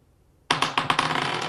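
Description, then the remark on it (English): Dice rolled for initiative clatter onto a hard surface after a moment of silence, a quick run of sharp bright clicks that settles into a steady rattling tumble, fairly loud, with no voices over it. “roll initiative.”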